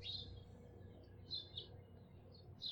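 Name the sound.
dawn chorus of birds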